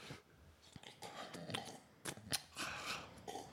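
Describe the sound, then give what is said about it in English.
A voice imitates noisily drinking chocolate milk with a run of wet slurping and gulping mouth sounds, punctuated by sharp smacks and clicks, fairly quiet and without any words. “drinks chocolate milk like this.”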